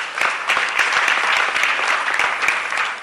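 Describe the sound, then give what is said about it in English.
An audience gives a round of applause for Madam Abiba, clapping in a steady, dense round lasting a few seconds, many overlapping hand claps forming a bright, even wash at a fairly loud level with no one speaking. “Please, a round of applause for Madam Abiba.”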